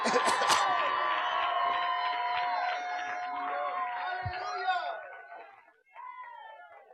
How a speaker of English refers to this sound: Give God praise in the house. Amen. Clap. Clap unto the Lord and shout unto the Lord.